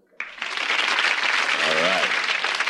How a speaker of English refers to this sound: Now that sign says applesauce. No. I'm kidding. It says applause.